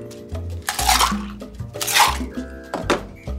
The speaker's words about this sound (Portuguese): Vamos reservar o nosso copo agora com gelo. Nosso mini tin, que é esse copo pequenininho da coqueteleira, vamos colocar gelo.